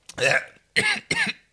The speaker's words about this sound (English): Cough. Go ahead. I'll edit it out. Or maybe I'll leave it in because it's funny now.